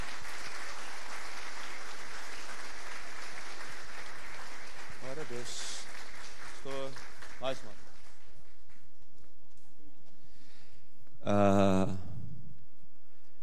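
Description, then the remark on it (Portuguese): A church audience applauds to praise the Lord as guests are called up, a dense, sustained wash of clapping that gradually thins out and fades, with a few brief voices and a loud exclamation near the end. “queria aplaudir o Senhor pela vida deles.”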